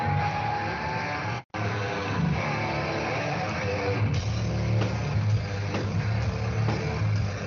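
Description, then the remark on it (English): Loud, heavily distorted heavy metal guitar riffing played back as a recording through shared audio, a dense, grinding low-end roar that cuts out for an instant early on, then resumes with choppy chugging accents. “Just like teasing the crowd with random riffs.”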